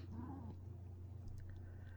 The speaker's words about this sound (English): Meow. Yeah, Zora's chastising me over that.